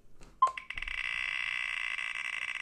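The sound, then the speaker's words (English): A phone's electronic alert: a quick blip, then a steady, buzzy ringing tone that holds at an even, fairly loud level until the end. No one speaks. “Ooh, you got something on your phone.”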